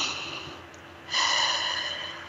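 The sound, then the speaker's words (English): An airy deep belly breath: a soft drawn-in inhale filling the belly with air, then a fuller, louder rush of air as the deep breath is let out, with no talking. “And as you're breathing, see how big you can make your belly. Fill it full of oxygen.”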